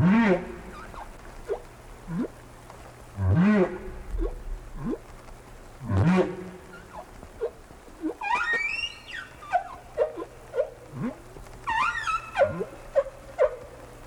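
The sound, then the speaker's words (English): Whale song with no talking, recorded about ten years after an earlier song in the same place from the same species: a few deep, swooping moans repeat slowly, then give way to a run of higher squeals and rising chirps, all echoing as if heard underwater. “The whales slowly accumulated a bunch of differences until they began to sing this song.”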